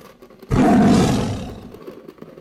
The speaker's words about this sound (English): In front of me was the tiger's head trying to get into the room through the hole. The tiger made a very loud roar to frighten me.